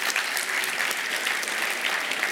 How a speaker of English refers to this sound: Can we give our band just a hand clap this morning for how they led us today in worship?